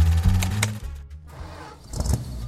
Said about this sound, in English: Yeah, my dad built her. 900 horses of Detroit muscle. It's a beast.